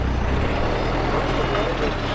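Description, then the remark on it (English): A forklift lifts an illegally parked car near a courthouse in Pakistan and places it on the sidewalk; its engine rumbles steadily with a heavy, low drone and broad mechanical noise, fairly loud throughout, with no clear pauses or distinct clanks. “This forklift had gently lifted the car and placed it on the sidewalk, and the driver was doing the same thing to dozens of other vehicles.”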